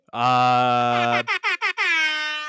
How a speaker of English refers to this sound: There was no drum roll or nothing. Just oh, right, sorry. Just I did the right air horn.